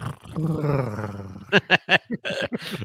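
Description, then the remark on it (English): A person imitates a cat's purr with a low, drawn-out rumbling hum, then breaks into a quick series of short, pulsing bursts, moderately loud. “As you purr.”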